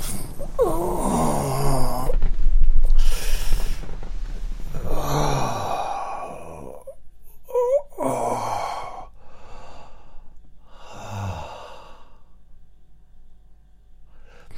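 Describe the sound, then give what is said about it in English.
A person groans and sighs while lowering into a chair, with breathy, voiced exhalations, a strained rise and fall in pitch, and a couple of shorter grunting breaths afterward. “Now this is me sitting down again.”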